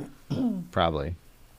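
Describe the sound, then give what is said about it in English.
Someone clears their throat in two quick voiced bursts, like a short "ahem," moderately loud against a quiet background with no talking. “You keep clearing your throat.”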